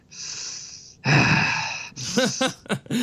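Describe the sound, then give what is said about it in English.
A voice imitates heavy breathing: a long breathy inhale, a louder rasping exhale, then a few short huffing gasps at the end. “Well, he always did that a lot, you know, his heavy breathing thing.”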